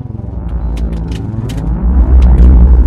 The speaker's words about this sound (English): What the damn hell was that? It looked like some sort of vehicle used to fly through pod space.